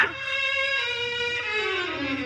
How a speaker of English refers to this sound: there's a little brown and white dog looking all over for you.